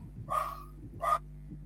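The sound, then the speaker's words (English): Two sharp dog barks about half a second apart in the background of a live recording, over a steady low hum, with no one talking. “So Stephen's silence with the dogs in the background, you can tell it's live.”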